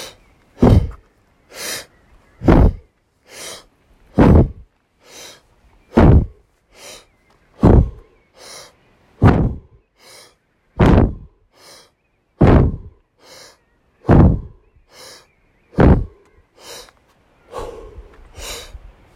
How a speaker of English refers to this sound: Finding that oceanic rhythmic breath, and then we're going to speed things up. Breathing in through the mouth, exhaling through the mouth. And we will begin all together in 3, 2, 1.